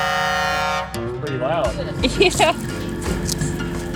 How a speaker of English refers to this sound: The kids signal for Sam, the driver, to blow his horn. It's loud.